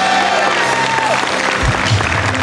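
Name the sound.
audience clapping loudly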